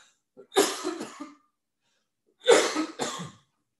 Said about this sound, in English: Excuse me. I had to cough.